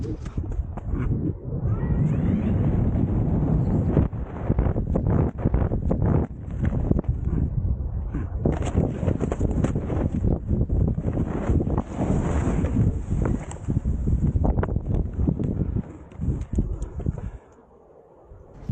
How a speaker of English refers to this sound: Tree in a base jumping harness, and it's just got windy and I'm getting blown around. If the tree breaks or my canopy breaks, I'm definitely going to break my back and some legs.